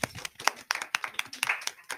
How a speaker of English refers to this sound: I love the church claps.